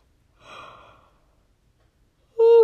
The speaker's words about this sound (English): Sorry, guys. I told you my mouth is getting so dry because I've been talking like for an hour now and now I'm yawning.